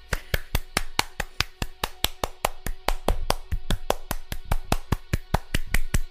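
Steady, rapid clapping, sharp hand claps landing evenly about five times a second for several seconds, loud and crisp with no voices over it.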